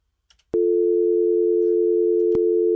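A phone call with a guest drops: the line cuts off with a click, then a steady, unbroken dial tone hums loudly and evenly, interrupted by one brief click partway through.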